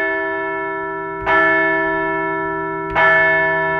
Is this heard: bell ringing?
yes